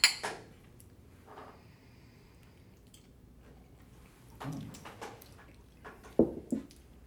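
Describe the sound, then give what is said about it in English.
Glasses of vintage rum clink together in a toast: a sharp ring at the start, then a few scattered clinks and light clattering handling sounds, with no one talking. “Cheers, thanks so much.”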